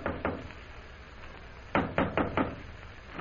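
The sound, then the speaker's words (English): Knocking on the door of room 419 at the Central Hotel: two soft raps, a short pause, then four firmer, evenly spaced knocks, clear with no voices. “Immediately after leaving the consul, Jim hurries to the Central Hotel, goes to room 419, and knocks on the door.”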